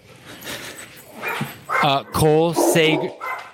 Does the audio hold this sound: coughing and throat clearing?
no